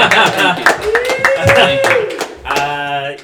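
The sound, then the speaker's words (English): An audience claps, a steady patter of many hands with crisp, irregular slaps that stay fairly loud throughout, while a man speaks over the applause. “No applause break for my bravery there.”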